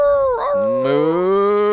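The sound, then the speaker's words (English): A person imitates a cow's moo with one long, loud, drawn-out voiced call lasting under two seconds. The tone is steady and slightly rising, and nothing else is heard. “Moo! Oh, the night cow!”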